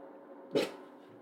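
A dog lets out a single short, sharp bark against a quiet, steady background hum, with no talking.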